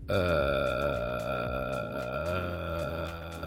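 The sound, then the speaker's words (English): A person makes a sustained, low, creaky croaking sound with the voice as a vocal warm-up exercise, a rough burp-like rasp held steadily for several seconds at fairly even loudness, without any words. “And he said he just, and I had to play it back, he sort of croaks.”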